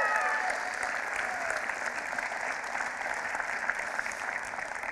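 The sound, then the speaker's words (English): A church audience applauds the hiring of a new kids director, the dense patter of many hands clapping sustained at an even loudness throughout, with no voices standing out above it. “I know some of you didn't clap.”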